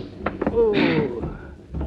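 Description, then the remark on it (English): A man hits another man hard in a fight. Several quick punch impacts land in a rough flurry, with a strained vocal grunt in the middle and one last heavy thump at the end. “Only I shouldn't have hit this guy so hard.”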